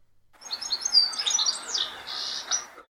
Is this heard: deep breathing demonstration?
no